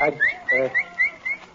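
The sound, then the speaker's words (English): A person whistles a string of short, rising chirps in a quick, even rhythm, like calling a dog. Brief bursts of a voice come in between the whistles. “What week you been whistling like you was calling a dog?”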